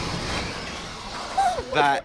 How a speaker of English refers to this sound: That is a speedy shutter